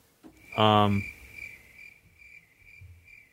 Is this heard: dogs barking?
no